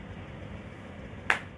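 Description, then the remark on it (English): One sharp, crisp hand clap rings out near the end, a single brief crack standing alone against a quiet background hum. “Bravo, we was clapping.”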